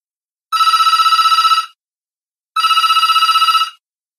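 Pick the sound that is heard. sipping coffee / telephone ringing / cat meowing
telephone ringing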